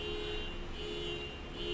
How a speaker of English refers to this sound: Can you hear that? This is post-lockdown. You guys are just honking away to glory.